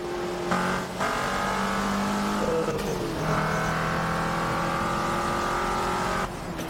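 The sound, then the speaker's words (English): A powerful sports car engine roars loudly as it races past, its pitch climbing and dropping through gear changes for several seconds with no one talking. “I think there's a car. I wonder if I can draft.”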